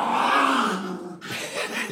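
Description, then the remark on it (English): A small, fluffy dog growls in a steady rumble for about a second, breaks off briefly, then lets out a rougher, grunting growl. “This little fluff butt makes all that noise.”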